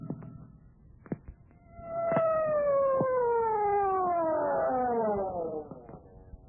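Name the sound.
siren wailing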